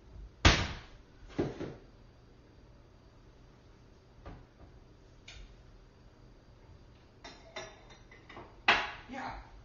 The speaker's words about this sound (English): Yeah, I have some coffee. Just a minute, let me get you a mug. Here you are.